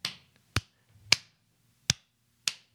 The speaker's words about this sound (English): Well, we need the clap claps to sync.